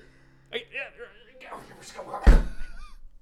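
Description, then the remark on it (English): Raised voices over a busy room, then a single heavy door slams shut, loud, with a low thud that rings briefly as the talk continues. “Close the door!”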